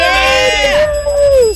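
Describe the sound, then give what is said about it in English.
A single cheesy winner bell sound effect, played on a radio show when a caller wins a phone contest and in use since 1983: a loud, buzzy sustained tone rich in overtones that wavers slightly and sags downward in pitch as it ends, about a second and a half long. “How lame is that bell?”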